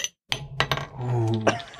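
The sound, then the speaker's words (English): A carbonated drink bottle popping open: a few sharp glassy clicks and clinks from the cap, a brief sustained hiss of release, then one more crisp click. No one speaks. “What is this bad boy we're popping out here?”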